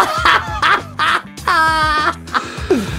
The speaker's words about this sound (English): As the turkey in the box says, gobble, gobble, gobble, gobble, gobble. Yeah. The turkey in the box.